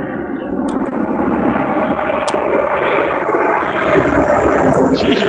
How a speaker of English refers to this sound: Sounds like that plane's right above your house. No. It's a helicopter, but it's not right above. I'm outside.